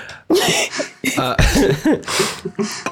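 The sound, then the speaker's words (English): A run of harsh, throaty coughs, several bursts in quick succession with brief gaps between them, loud. “Don't cough on me.”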